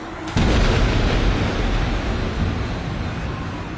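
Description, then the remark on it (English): A sudden, loud crack of thunder from a storm over the sea, with howling wind and lightning, bursts in after a brief quiet moment, then rolls on as a heavy, deep rumble that stays strong to the end. No voices. “While the wind howls and lightning ignites the sky, in the safety of Planaxis, we are free.”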